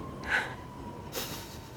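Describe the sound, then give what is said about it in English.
A train rumbles past, with a steady low roar, a faint sustained whine and two short bursts of hissing air. No one speaks. “Do you need, is this a train?”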